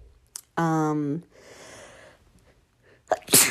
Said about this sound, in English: Oh my gosh. That was a really strong sneeze. Bless me. Sorry, guys.